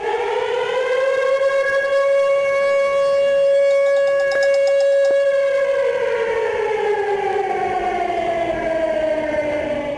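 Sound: siren wailing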